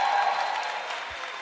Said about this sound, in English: Come on, clap like you're excited to receive a word from God.